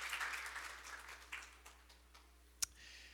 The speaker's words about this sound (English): Would you give the Lord a big hand clap of praise as you're seated this morning?